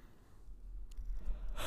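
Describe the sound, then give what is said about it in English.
A quiet yawning breath: a slow, muffled intake that swells gradually, ending in a short airy rush of breath. No one speaks. “No, but now we got some really good audio of you of breathing.”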